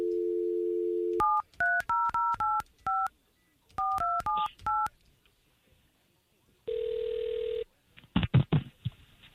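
A steady dial tone gives way to a quick run of about ten beeping touch-tone keypresses in two bursts as K92.3 radio station hosts call a listener's number, followed by a single long ring tone and a few rough clicks as the line picks up.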